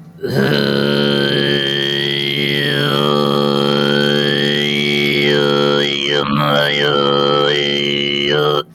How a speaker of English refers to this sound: And somewhere on a little radio station, he picked up a throat singing transmission. Where they were doing their... So you get like the overtones. Let's see if I can get the deeper one again.